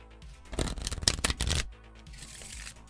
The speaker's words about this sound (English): Well, a joker was drawn, so we shuffle.